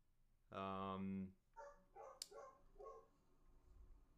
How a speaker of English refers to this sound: So, you have a dog, I hear, in the background. Let's get him in an interview seat. No, you probably don't want that to happen. Someone probably came home, so he's probably losing his mind.